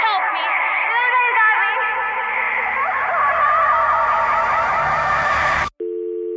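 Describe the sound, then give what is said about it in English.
A loud, warbling electronic squeal with layered, echoing tones fills a phone line for several seconds, then cuts off abruptly into a steady, flat telephone tone. “Getting some feedback. We've got some kind of echo going on.”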